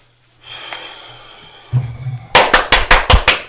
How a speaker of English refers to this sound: God, triple clap. That's what I got back in college. Oh, the old triples. The triple drip.